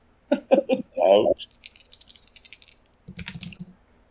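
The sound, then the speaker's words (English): A rapid flurry of light, hard clicks and rattles as dice are rolled across a table for damage, coming up 7, lasting a second or two, with a person's voice briefly before and after. “Okay, roll your damage.”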